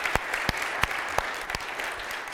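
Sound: audience clapping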